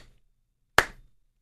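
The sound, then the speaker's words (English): A single sharp hand clap rings out after a short silence, loud and crisp with a quick decaying tail, the opening beat of a slow clap. “Bit of a slow clap.”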